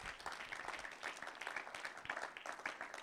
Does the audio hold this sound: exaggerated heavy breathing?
no